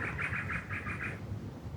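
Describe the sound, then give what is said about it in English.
A bird in the trees of Glebe sings a quick run of about seven bright, evenly spaced chirps that stop after a second, with a low outdoor rumble underneath and no voices. “There's a whole bunch of bird song.”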